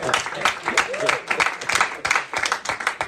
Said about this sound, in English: That deserves a cheer. That deserves a cheer.